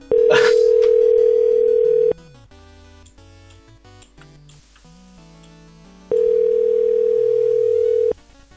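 An outgoing phone call ringing: two loud, steady, low electronic ringback tones, each lasting about two seconds, separated by a four-second pause, with only faint background sound between them.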